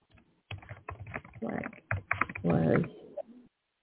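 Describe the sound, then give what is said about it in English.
Rapid typing of a message in an online chat on a computer keyboard: bursts of sharp keystroke clicks in irregular runs, with a denser flurry toward the end before it stops. “I'm still, typing in the chat as we close the show. I'm typing one more message.”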